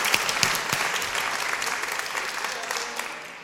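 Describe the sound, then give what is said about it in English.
A burst of applause from several people for a spelling of the word chocolate, dense rapid claps at moderate loudness that hold steady for a few seconds before tapering off at the end. “And there was just a little O, but I still think you deserve a clap.”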